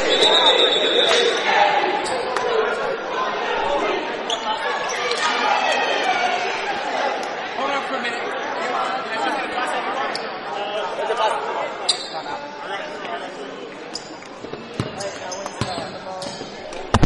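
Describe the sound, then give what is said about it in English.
A basketball is dribbled a couple of times on a hard court during a timeout in a game involving the Panthers and Maplewood, with Maplewood leading 16-8, amid steady crowd chatter, the sharp thumps standing out briefly over the murmur of people talking. “Only a couple of dribbles throw in.”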